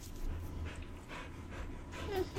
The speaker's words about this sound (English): Can you hear Sarah, our dog? She's panting.